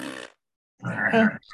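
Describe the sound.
A voice imitates a fart at a breakfast table: a short buzzy blurt, a brief pause, then a longer, louder rasping raspberry that cuts off abruptly.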